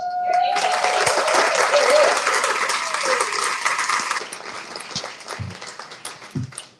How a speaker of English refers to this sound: Was there anybody that did not clap for me? just checking.